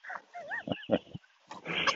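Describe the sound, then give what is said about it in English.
A dog on a walk coughs and hacks, trying to cough out something it chewed: a brief whiny, wavering sound, then three harsh choppy coughs in quick succession, ending in a longer rough, retching burst. No one speaks. “Cough it out. Spit it out.”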